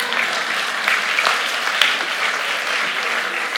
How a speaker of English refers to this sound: Amen. Now you can clap.